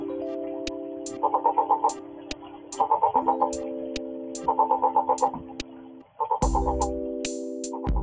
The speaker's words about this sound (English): Tomato frogs breed year-round in freshwater pools. The male frog's call is a series of short, low-pitched notes.